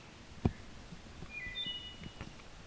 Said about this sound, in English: But here's a wood thrush.